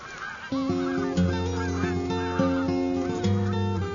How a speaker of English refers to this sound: I listened and I heard a flock of geese flying by, heading south.